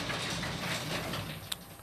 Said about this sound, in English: Y'all gonna hear a little noise real quick. The garage door opening up.